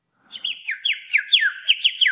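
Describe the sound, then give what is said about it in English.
A person imitates a cricket with the mouth: a quick, steady run of about eight high, whistly chirps, each sliding slightly downward in pitch, fairly loud, with no talking. “He does that with his mouth. I actually nominate that to take over the cricket every time.”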